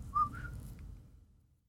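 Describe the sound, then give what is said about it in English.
A woman whistles a quick two-note call to lure someone in, the second note a bit higher and longer, over a low background rumble that slowly fades out. No one speaks. “So she hides it in her pocket, and she lures him in with the whistle game.”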